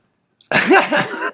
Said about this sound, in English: I'm right on the edge of a sneeze.